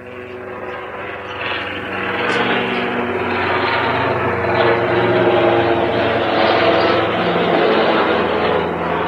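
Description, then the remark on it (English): A helicopter drones steadily overhead, its engine roar swelling after a second or two and then holding loud, a constant rumble with no talking. “Well, here's a good, authentic background noise for the podcast. What is like this helicopter guess.”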